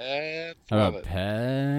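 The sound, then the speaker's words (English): A person's voice imitates a cow, giving long, drawn-out moos broken by a brief pause. The moos are loud, with no other talk underneath. “And they'll accept cows.”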